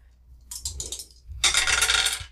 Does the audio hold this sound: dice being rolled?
yes